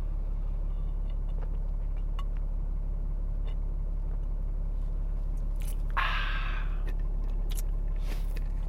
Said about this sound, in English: What I wish to propose, excuse me while I get another sip here.